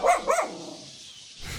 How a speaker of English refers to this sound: We got a dog ready to come eat you alive.